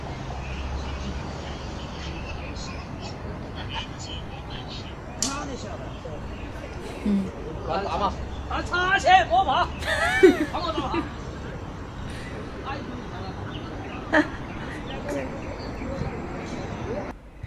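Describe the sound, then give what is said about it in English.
Playing cards slap down onto the ground a few times, sharp, brief whacks scattered irregularly through lively overlapping chatter and banter from several people. “You can definitely hear this whack, the whack of the cards being slapped.”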